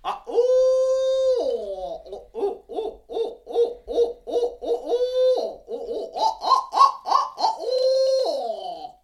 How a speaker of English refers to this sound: Just that change from that typical note, okay, I'm hearing it. Boom, they'll respond and gobble at that owl laughter is what they call it.